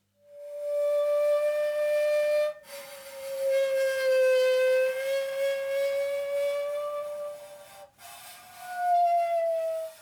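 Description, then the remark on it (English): A saw bowed with a cello bow sings a loud, eerie sustained tone that bends slowly in pitch, played as three long notes separated by two brief breaks, with no voices. “This is the sound of a saw being bowed with, I think it's a cello bow.”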